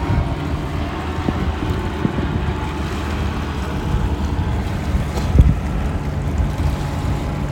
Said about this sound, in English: thank the pilot, by the way, that's flying this airplane above me.